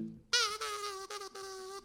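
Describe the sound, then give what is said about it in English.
A thin, high-pitched mosquito whine starts after a short quiet moment and drones steadily for over a second, briefly dipping a few times as if the insect darts around. “There's a mosquito in here and it's out for blood!”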